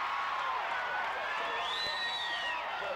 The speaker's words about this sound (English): but the crowd seems more than happy to be able to finally have a chance to cheer you.